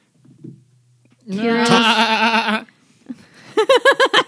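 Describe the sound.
A person imitates a goat with a loud, wavering bleat that lasts over a second, then follows it with a quick burst of short, choppy bleating sounds.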